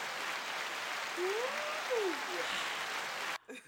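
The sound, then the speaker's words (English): A canned burst of applause from an applause button sound effect, dense steady clapping with a couple of rising and falling whoops on top, running about three seconds before cutting off abruptly. “You pressed the applause button for what?”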